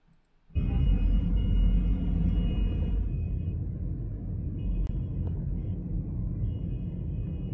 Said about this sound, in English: No wonder there's so much traffic.